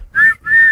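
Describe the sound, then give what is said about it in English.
Two short, shrill whistle blasts in quick succession, each a steady piercing tone, loud, with no voices. “Blow the whistle.”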